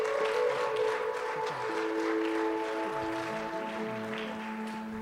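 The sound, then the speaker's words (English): Steady applause from a large church audience at Thrive Church, a dense crackle of clapping that holds for several seconds, with sustained musical tones humming underneath. “Can we just give these heroes just a round of applause?”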